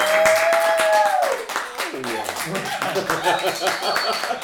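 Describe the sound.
A crowd bursts into steady, loud applause, dense clapping filling the whole stretch, with voices whooping and calling out over it.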